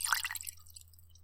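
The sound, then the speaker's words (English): A short splash of scotch being poured into a glass, a quick bright gurgle for about half a second that fades into quiet with a low steady hum underneath. “All right, here, I'm going to pour you a little bit.”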